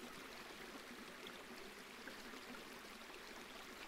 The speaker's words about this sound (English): Don't you just love the sound of water? Don't you just love everything about water?